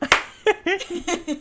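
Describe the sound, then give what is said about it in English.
A sharp, loud hand clap rings out, followed by a few softer, uneven claps mixed with brief voiced sounds like murmurs or laughter. “Wait, we have to clap.”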